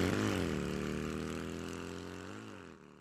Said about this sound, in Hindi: मोटरसाइकिलों की फर्राहट से पूरी गली गूंज उठी, और ये जा और वो जा।